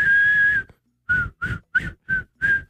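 A person whistles a short tune up close: one long held note, a brief pause, then five quick, evenly spaced notes, clear and moderately loud with no talking.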